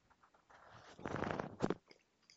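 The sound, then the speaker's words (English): A quick sip of sangria: a soft, airy slurp lasting under a second, followed by a faint swallow. No one speaks. “So let me take a real quick sip of sangria here.”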